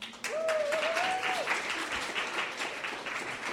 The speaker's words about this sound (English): And lovely panelists around the house, give them an applause if you want to.